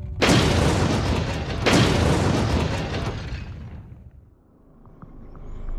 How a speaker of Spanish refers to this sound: Una última metedura de pata y un fallo de diseño bajo condiciones extremas lo llevó a un embalamiento neutrónico. Tiene mal arreglo eso. Se produjo una excursión de energía y dos grandes explosiones a la 1 y 24 de la madrugada.